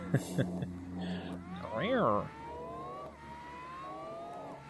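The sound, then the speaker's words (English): A car engine, heard in sped-up video footage, revs up and drops in pitch as it shifts gears, then settles into a steady, slowly rising whine. It's moderately loud, with faint murmuring at the start. “And it makes the gear shifting on the engine really enjoyable.”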